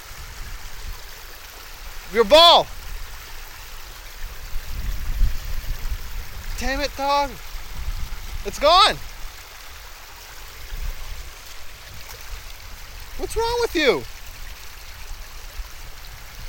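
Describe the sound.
A creek with ice on the water flows steadily with a continuous soft rushing and burbling, while a man trying to cross it speaks in a few short, scattered phrases over the water.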